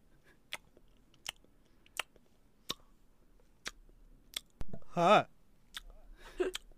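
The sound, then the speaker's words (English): Exaggerated, wet, cartoon-like gum chewing by a person voicing a character called Bazooka Bro, a steady series of sharp smacks and clicks about every second, followed by a brief squeaky vocal sound and more smacking. “Hi. Chew gum. Like cartoons.”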